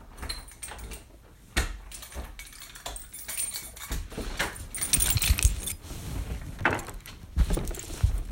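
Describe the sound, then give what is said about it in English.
A bunch of keys jangles and clinks in irregular bursts while two locked door locks are worked open, with sharp metallic rattles and a few dull knocks, growing busier toward the end. No one speaks. “Why is both fucking locks locked?”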